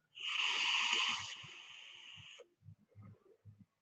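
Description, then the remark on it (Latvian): Air flowing through a vape tank: a steady, airy hiss with a faint whistle runs for about two and a half seconds, louder at first and then easing, followed by a few soft low clicks and taps. “Šeit viņš klusāk svilpo, šeit tomēr skaļāk svilpo.”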